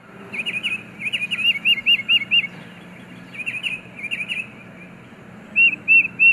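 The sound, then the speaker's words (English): A tufted titmouse, a songbird, gives its anti-raptor alarm call: rapid bursts of sharp, high-pitched chirps, fairly loud, repeating in quick runs with short pauses over a low background rumble. “The tufted titmouse, for example, is a songbird whose anti-raptor warning cries send squirrels and chipmunks running.”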